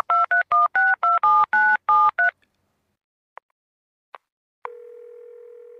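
A quick run of about ten touch-tone keypad beeps, each a short dual-pitched tone, followed by a few faint clicks and then a steady, continuous dial tone.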